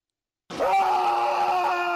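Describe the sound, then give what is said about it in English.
A sudden sharp pop from a player's injury during a game breaks the silence, then a loud, sustained scream of pain holds steady for over a second, alone with no talking. “If you listen very carefully, you'll hear a pop and then a scream.”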